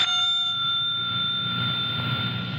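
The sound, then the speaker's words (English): A single bright ding from a front desk bell slapped down by hand, its clear metallic tone ringing out and slowly fading over a low background hum, fairly loud, with no voices. “He just rings one of those front desk type bells.”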